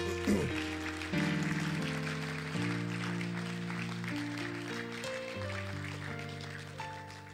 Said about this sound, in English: Clap for the Lord Jesus.